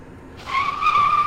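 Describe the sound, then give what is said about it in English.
A sharp, high-pitched squeal of car tires skidding on pavement as a car swerves off the road, starting abruptly and holding steady for about a second, loud, with no talking. “The car in front of me, it swerved off the road and ran into a tree.”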